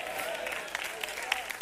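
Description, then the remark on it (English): A few scattered hand claps, about three, from an audience during a Sunday church sermon, irregular and not in rhythm over a low murmur, moderately loud. “I got three hand claps, two nods.”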